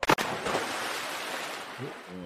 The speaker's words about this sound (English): Ooh. That was a sexy little splash, wasn't it?